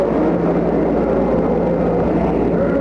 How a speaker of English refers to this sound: Ignition sequence start. 6, 5, 4, 3, 2, 1, 0, all engine running. Liftoff, we have a liftoff, 32 minutes past the hour. Liftoff on Apollo 11.